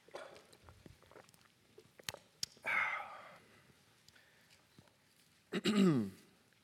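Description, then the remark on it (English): A person with a tickle in their throat clears it twice during a Bible talk, with a short harsh burst around the middle and a louder, rougher throat clearing near the end, separated by quiet rustling and small clicks. “Got a little bit of a tickle in my throat that's happening, so forgive the coughs or things like that.”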